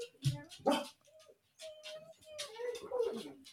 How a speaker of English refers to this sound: Oh my dogs just gave me a heart attack.